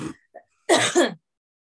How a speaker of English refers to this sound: Let me get all my coughing out of the way.